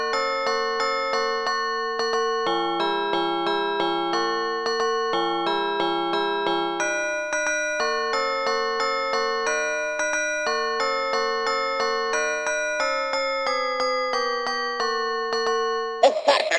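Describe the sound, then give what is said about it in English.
An electronic doorbell chime plays a long, steady melody of clear, ringing bell-like notes, each sustained and overlapping, heard alone without talk before cutting off abruptly at the end. “I'll just play this doorbell and we'll meet you on the other side.”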